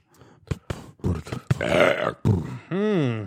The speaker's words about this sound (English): That's the sound that dead body makes. That was a chili burp.